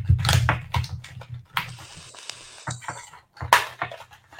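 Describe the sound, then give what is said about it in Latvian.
The rough paper packaging of a Vaporesso O Small vape device is torn open, a series of crisp rips and crinkles with one longer tearing stretch in the middle, and no voices. “Ok, raujam vaļā.”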